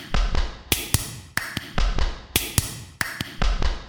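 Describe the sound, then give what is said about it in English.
Sharp, bright hand claps land in a steady rhythm, mostly in quick pairs, over a busy, thumping rhythmic backing. No one speaks. “Should we do some clapping?”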